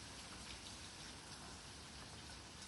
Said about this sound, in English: I know the sound of rain is quite lovely. I have every intention of continue writing, unless of course this rain continues and then I take a nap.